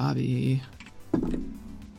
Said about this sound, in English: With my very first roll with my brand new copper dice.